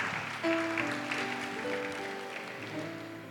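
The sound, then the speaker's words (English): An audience in a church on a Saturday afternoon claps steadily for church leaders called to the front. It is a dense, even patter of many hands lasting the whole clip, with a few held musical tones sounding faintly underneath. “Clap for them.”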